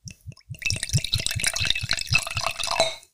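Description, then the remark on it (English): Bax Botanics Verbena non-alcoholic spirit glugs steadily from a bottle into a glass, a rapid run of bubbling pulses with a rising ringing tone as the glass fills, lasting a few seconds. “And while you're pouring yours, I will crack open some tonic water.”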